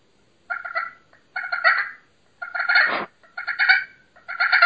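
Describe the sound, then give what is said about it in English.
Loud turkey calls from a Primos Crystal Freak slate pot call: five raspy bursts of yelping notes with short pauses between, one bending sharply downward midway, and no talking. “And I've probably had, let's say, 50 or 60 other pot calls, and I always kind of go back to this one.”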